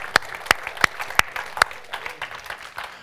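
An audience at an evening church service applauds as a clap offering to the Lord, with a few sharp, evenly spaced claps standing out over a dense wash of clapping that carries on more loosely after the first couple of seconds.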